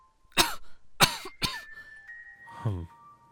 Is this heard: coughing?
yes